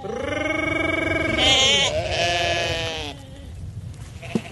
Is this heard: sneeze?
no